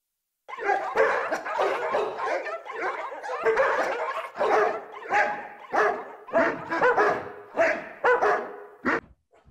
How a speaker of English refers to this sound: while she was away, I interviewed a couple of the dogs. Here's a little snippet.